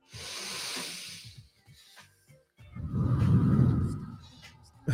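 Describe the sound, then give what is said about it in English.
A long, hissing breath drawn in through the nose, filling the lungs and stomach, followed after a short pause by a louder, deeper rushing exhale, with no talking. “Let's, number one, fill your nose up and your lungs and your stomach and let your stomach blow out.”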